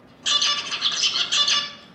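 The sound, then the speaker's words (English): A male zebra finch sings a brief, buzzy, high-pitched song: a nasal beep phrase, a run of harsher notes in the middle, then the same beep phrase repeated, fairly loud and with no talking. “So you'll hear a beep beep and then some stuff in the middle and then another beep beep.”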